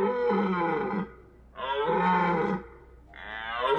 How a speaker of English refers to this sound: Guttural groans. A drip of foul-smelling spit.